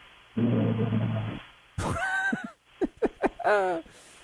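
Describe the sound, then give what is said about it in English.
A man lets out a long, low, raspy snore, then a few throaty grunts and short snorting bursts follow, ending on a rising nasal groan. “He's got a little snore. Not too deep a snore, though.”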